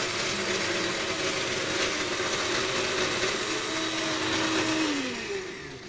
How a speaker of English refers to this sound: And then we're going to just whiz this up real quick. So let's go ahead and put our blender in there.